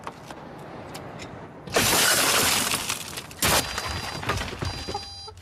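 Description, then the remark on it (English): A car window smashes with a loud, bright crash of shattering glass as a man breaks into the car, followed by a second burst and scattered tinkling fragments, with faint background noise and no voices. “Okay, so there's a guy breaking into a car.”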